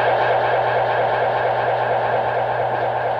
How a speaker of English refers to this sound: The saucer sound! It's on the tape. You forgot to turn it off.